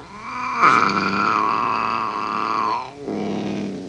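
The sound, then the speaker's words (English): A loud, sustained dog growl rumbles for a couple of seconds, dips briefly, then a second snarling growl starts right after, menacing with no talking. “The dogs.”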